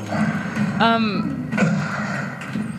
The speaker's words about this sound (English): Wow, this is the slowest opening door. Wait. It's not open. Is it open? I think you just open it.